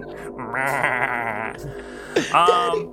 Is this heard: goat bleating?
yes